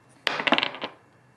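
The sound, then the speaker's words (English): A die clatters across a hard tabletop in a quick burst of rattling bounces, fairly loud, settling after less than a second on a 19, with no one talking. “that's a 19 on a dice roll.”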